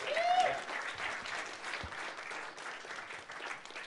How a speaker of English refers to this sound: You know, and applaud that.